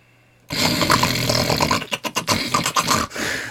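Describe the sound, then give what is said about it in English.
A voice imitates loud, rapid snoring, slightly exaggerated: after a brief quiet start comes a long harsh rasping snore, then a quick burst of short snorting pulses, loud with no words. “All the snoring I would do in a minute, you do that in like a 3 second gap, and then you're good again for a minute.”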